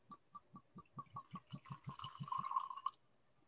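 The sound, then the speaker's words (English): Whiskey glugs out of a bottle into a glass in quick, rhythmic gulps that speed up and blend into a steady pour, then stop abruptly. No one speaks. “Is there a special way to pour it here? No. Okay, just gonna pour it.”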